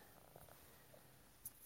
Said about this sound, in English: My cat is purring by me, too. Cute. Can you guys, I think, yeah, Leon's being a happy boy today.